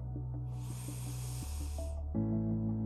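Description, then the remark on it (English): A single long, deep inhale through the nose during a guided breathing exercise, a steady hissing draw lasting under two seconds, over soft sustained background music. No one speaks. “Take three deep breaths through your nose and exhale through your mouth.”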